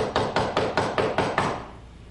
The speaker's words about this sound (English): So they go get the oil and they come back and they're knocking.